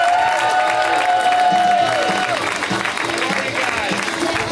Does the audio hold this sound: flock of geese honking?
no